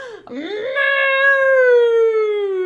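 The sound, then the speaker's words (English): A person imitates a cow with one long, drawn-out "moo," starting with a quick dip in pitch, then holding a steady, slowly falling tone, loud and alone for nearly three seconds. “Oh, you are some cute farm animals out there, huh? You little cows.”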